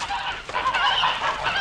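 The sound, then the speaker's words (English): A flock of geese kept at a person's sister's house honking continuously, their harsh overlapping calls filling the whole moment without a pause and with no voices present. “My sister had told me that I might have the pick of her geese for a Christmas present.”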